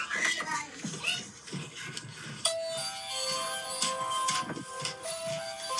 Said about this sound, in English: Is that your doorbell?